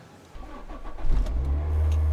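A car engine cranks and catches, then settles into a steady, loud low idle rumble after a brief rising surge, as the car is started to move it about 2 metres. No one speaks.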